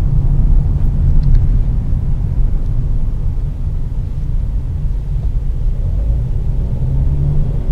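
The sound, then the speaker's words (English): Steady low rumble of a 1.6 petrol automatic car's engine and tyres on the road, heard from inside the moving car on a drive into work at 6:40 with 12 degrees outside; a continuous dense drone with no voices. “A Rambling Drive Into Work”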